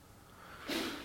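A single short sneeze bursts out after a moment of near silence, a sudden breathy, hissing blast that fades quickly, with no talking around it.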